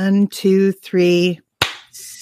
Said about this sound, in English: So we should do like a 1, 2, 3 clap and do that until we think that we clapped at the same time. So let's start with that first. Okay. So I'll count it off. We'll do 1, 2, 3 clap.